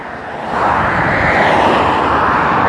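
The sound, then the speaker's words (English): Loud traffic roar from cars on a busy road that someone is crossing on foot, a broad rushing whoosh that swells after the first half second and then holds steady without a break. No voices. “If one of these cars loses control and hits the middle of the road, it's gonna hit me and I'm gonna die.”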